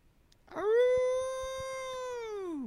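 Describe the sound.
A person imitates a wolf howl with one long, loud, steady note that swoops up at the start and drops off at the end, with no other talking.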